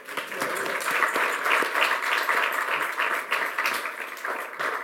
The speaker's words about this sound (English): So I'd like to have a big round of applause to my colleagues, please.